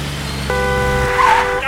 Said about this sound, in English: And 2 hours ago, we got stuck in this traffic. Since then, we'd move half a mile.